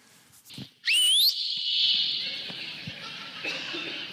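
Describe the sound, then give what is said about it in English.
A loud, piercing human whistle, imitating how a mother called her children in from the neighborhood for supper, sweeps sharply upward, then holds one long, steady high note for about three seconds, with nothing else competing. “She's the one who taught me how to whistle like that.”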